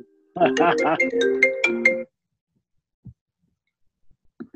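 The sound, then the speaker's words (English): A mobile phone ringtone plays a bright, melodic electronic tune for about two seconds, fairly loud, then cuts off; a few faint thumps and a brief murmur of voice follow. “Starting to get emotional, starting to get intelligent, and then my fucking phone.”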